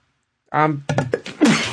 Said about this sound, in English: I hit the mute button, and then I accidentally unmuted it right as I sneezed.